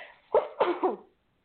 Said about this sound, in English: and I'm going to sneeze, you're going to forgive me, hold on.